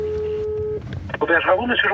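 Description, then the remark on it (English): A steady electronic phone tone hums for under a second as a call is placed to a restaurant from a small provincial town on a mountainside outside Paris, then a person begins talking over light background noise. “But I just have to call the restaurant.”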